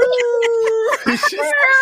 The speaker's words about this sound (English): No, you can hear my cat. My cat, she was a talking cat.